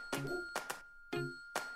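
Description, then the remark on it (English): A short, bright chiming melody of about five quick notes in an uneven rhythm, like a simple electronic tune, clear and close with no voices. “That's Jingle Bells.”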